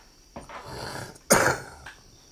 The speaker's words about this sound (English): Excuse me. I got a smoker's cough. I've been talking about my smoker's cough. So if you hear me cough, don't think I got it.